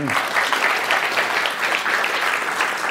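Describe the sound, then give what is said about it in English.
Steady applause from an audience at an Intelligence Squared event, a dense wash of clapping that holds at an even, fairly loud level throughout without breaking off. “I will not interrupt an applause line for Intelligence Squared.”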